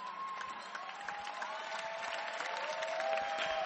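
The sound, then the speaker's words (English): A crowd claps for a spoken testimony, a steady, dense, continuous wash of applause that swells slightly toward the end, with faint cheering and a sustained tonal hum running underneath. “Clap your hands for this wonderful, powerful testimony.”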